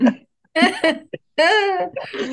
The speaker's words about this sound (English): I just snuffled. My apologies. Gosh, if my friends ever listen to it, they say I make more weird noises than anybody in the world.